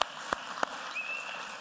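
A short burst of applause from a group of kids, given at the speaker's request for a person: a steady wash of clapping with a few louder, sharper individual claps standing out, and no talking.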